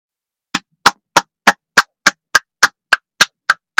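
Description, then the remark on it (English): A round of applause for the Miami Marlins organization, heard as a steady run of about a dozen sharp, evenly spaced claps, crisp and fairly loud, with no voices and silence in between. “Yeah, that round of applause.”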